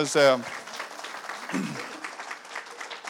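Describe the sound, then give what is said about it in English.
An audience claps steadily for about three seconds to encourage a speaker coming forward, a dense, even patter of many hands, with a brief loud voice cutting in at the very start. “So let's give her a wee bit round of applause, could they?”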